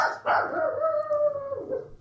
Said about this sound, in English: Oh, you did it. You set off the hound.